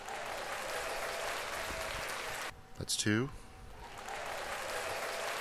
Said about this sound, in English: Oh, shit, I haven't been doing the fucking applause sounds. Hold on, wait. My God. I forgot the sound effects.